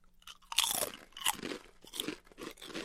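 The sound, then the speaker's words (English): Loud, crisp crunching of expired olive oil potato chips being bitten and chewed, a sharp first bite followed by a steady series of crackly munches, with no talking. “Let's try olive oil first because it's the most expired. Cheers. Chip cheers.”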